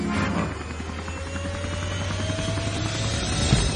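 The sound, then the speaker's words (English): A helicopter drones steadily, its rotor thudding in a fast, even rhythm over a deep engine hum and rushing whine, holding a constant loudness throughout. “Helicopters have been a staple in the modern world, but where do they take off from?”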